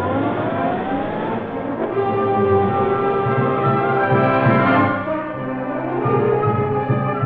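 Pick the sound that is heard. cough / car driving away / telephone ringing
car driving away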